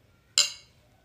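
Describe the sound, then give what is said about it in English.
A single bright clink of glasses touching in a toast, fairly loud, with a short ringing tone that fades within a fraction of a second against a quiet background. “All right, this or that. Cheers.”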